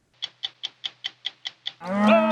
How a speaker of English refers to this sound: Cattle ranchers in Wyoming who every spring push thousands of cows along the same 70-mile route their ancestors pioneered 125 years ago. The Green River Drift is the country's longest running cattle drive.